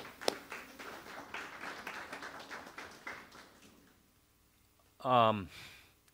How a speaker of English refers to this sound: Robin, just raise your hand. Robin, and let's give her a hand clap, please, church.